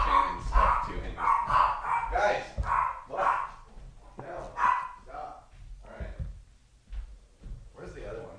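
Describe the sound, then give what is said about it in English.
Three dogs bark loudly in rapid, overlapping bursts, the barking continuing in uneven volleys with short pauses, some yips mixed in. “We have three dogs here today. It's probably like a delivery person or something.”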